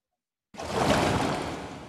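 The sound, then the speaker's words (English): After a brief silence, a loud ocean wave crashes in suddenly and washes on as a steady, broad rush of surf that barely fades before the end. No voices. “if I jump into the ocean and I go underground and I hear a wave, does that mean we moving into current news?”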